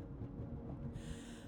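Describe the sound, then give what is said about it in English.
Heavy, labored breathing by a woman, fairly quiet, with a low rumbling background; the breaths grow airier and harsher partway through, with no talking. “You're breathing really hard.”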